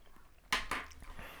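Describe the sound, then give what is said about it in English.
Crunchy chewing of food as hard as a rock, two sharp crackling bites followed by a few softer grinding crunches, fairly quiet with no talking. “You're still chewing. It's hard as a rock.”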